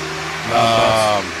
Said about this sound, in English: Loud Bus.